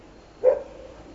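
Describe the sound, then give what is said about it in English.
A dog gives one short bark, moderately loud, then the sound fades into quiet with a faint lingering hum. “Does it feel different when you hear the dog?”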